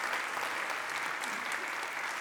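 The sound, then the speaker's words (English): A church audience claps steadily for its Connect group leaders and overseers, a dense, continuous wash of many hands applauding at an even loudness throughout, with no voices standing out. “Let's give these guys an applause.”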